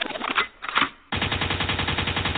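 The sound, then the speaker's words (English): A gunshot sound effect on a radio show: two quick bursts, then a sustained rattle of rapid-fire shots in a steady machine-gun rhythm, loud and a bit muffled, with no talking. “Lakewood means rewind, a gunshot means forward.”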